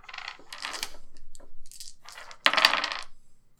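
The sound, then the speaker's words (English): Dice, including an extra blue die, are rolled for a difficulty-2 check in a tabletop game, clattering and tumbling across a hard tabletop in several quick rattling bursts, the loudest roll landing near the end before settling. Fairly loud, with no voices. “That's going to be difficulty 2. With an extra blue dice, because there's a lot of them making a lot of noise.”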